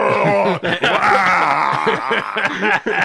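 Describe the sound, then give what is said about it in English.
A voice imitates a toddler girl screaming in a tantrum in a shopping cart: loud, strained wailing that rises and falls, broken by a couple of brief catches of breath, without words. “They're just screaming like Jabba the toddler, and the lady's like, "So, come, it's okay, calm down, calm down."”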